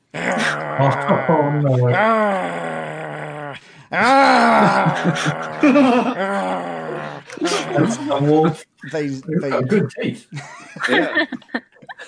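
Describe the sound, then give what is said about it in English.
A person imitates three chained wolves in a cave growling in the listener's direction, making a string of drawn-out, groaning snarls that rise and fall in pitch, with brief pauses between bursts. “They start growling. They start growling in your direction.”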